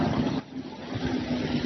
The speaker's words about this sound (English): Again, see the traffic's coming this way, advertising this way.